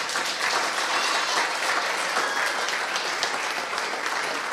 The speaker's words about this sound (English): I know this looks really mean, but could you please applaud the kids?